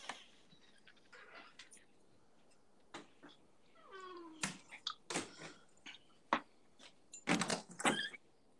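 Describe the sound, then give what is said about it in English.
A squeaky door hinge creaks in a drawn-out, whiny squeal, surrounded by scattered knocks and clattering bumps, with no talking. “All those squeaky doors. My door's squeaky now too, right now, actually.”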